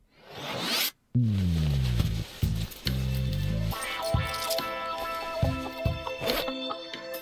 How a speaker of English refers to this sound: All right, we've pulled the zipper down. It's time for the mailbag.